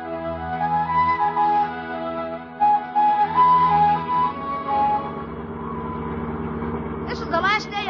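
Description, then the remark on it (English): A car engine runs steadily with a low, droning hum and a whiny overtone, fairly loud, ending with a brief higher-pitched burst. “Up in your car, Judge.”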